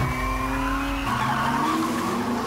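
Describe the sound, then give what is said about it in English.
A car accelerates hard, its engine roaring loudly while the tires squeal in a sustained, high whine. The pitch of the engine shifts upward about halfway through as it keeps pulling. “Oh, that's got a little kick, got it, bro.”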